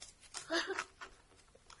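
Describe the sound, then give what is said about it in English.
A quick, messy shuffle of a deck of playing cards: a run of soft papery riffles and flicks, fairly quiet, with no one talking over it. “I'm going to do just a simple, messy shuffle because I don't want to.”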